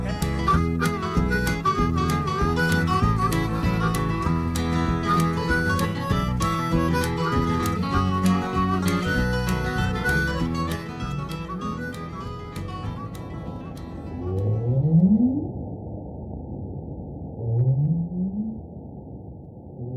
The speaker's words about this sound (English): Northern right whales have reason to sound mournful. They're lonely.